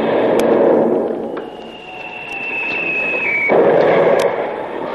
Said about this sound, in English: Now we are in the soup. That shot must have carried away the rudder. At least the helm swings like a rag in a breeze.